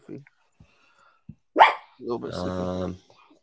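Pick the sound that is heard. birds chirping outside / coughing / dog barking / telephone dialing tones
dog barking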